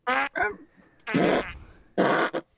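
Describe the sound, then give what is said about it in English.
Three loud fart-like bursts in a row, each about a quarter to half second long, with a raspy, buzzing texture and short gaps between them. “He's not laughing, he's farting.”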